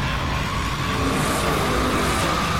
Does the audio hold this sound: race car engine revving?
yes